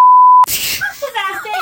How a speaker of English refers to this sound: She's going to have to use a beep for the first time in the show.